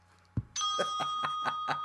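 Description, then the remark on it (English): A short thump, then a bright swear bell rings out after a swear word, struck about five times in a quick, steady rhythm while its tone keeps sustaining. Clear, with no talking. “There it is. The swear bell.”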